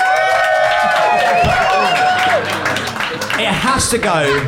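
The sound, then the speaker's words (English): A live Phoenix audience votes by applause: loud applause rolls on steadily for a few seconds, dense clapping mixed with crowd cheers, whoops and high whistles rising over the noise. “But if you think Jeff and Fanshawe made the best case, please applaud now.”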